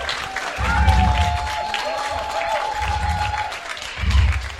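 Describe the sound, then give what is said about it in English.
A crowd at an indie show claps and cheers loudly, with steady applause swelling in bursts and a sustained whistle-like tone riding above the noise; voices shout throughout. “They want your claps.”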